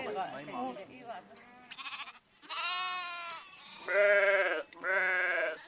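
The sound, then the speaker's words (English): Sheep bleat loudly, three long wavering cries in a row, each a sustained nasal call, after a few seconds of softer, shifting animal sounds. “sheep have always provided for her family.”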